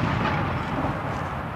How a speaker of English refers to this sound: He launched a week-long bombardment of Te Ruki Kawiti's newly built pā at Ohiawai.